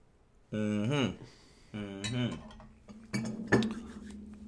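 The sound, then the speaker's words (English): Glasses clink together in a quick toast, a few bright clanks bunched near the end, after two short voiced calls from people beforehand. “ask that you join us in raising whatever it is that may be able to make that sound. Ba ba ba ba. And join us for the clanks.”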